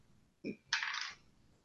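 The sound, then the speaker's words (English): Dice hit a hard tabletop with a sharp clack, then rattle and tumble briefly for under half a second before settling. The sound is fairly loud, with no talking. “Come on, crappy dice.”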